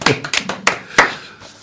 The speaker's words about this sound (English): And when he finally retires, he will be sorely missed. And I'd like the four of us to give him a well-deserved round of applause. Yeah. Well done